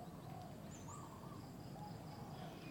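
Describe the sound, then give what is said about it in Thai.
Birds chirp and call softly over a steady hum of insects, with chickens among them, a calm outdoor nature ambience among shady trees on a cool, fresh morning with wind and sunlight, with scattered high tweets and low cooing throughout, no voices present. “หายใจอากาศบริสุทธิ์เข้าไปอยู่ท่ามกลางเมฆไม้ร่มรื่นชื่นใจเมฆไม้ธรรมชาติสายลมแสงแดดเสียงนกเสียงไก่เสียงแมลง”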